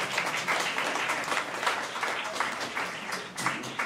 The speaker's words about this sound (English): Eight centuries late, but he appreciates the applause.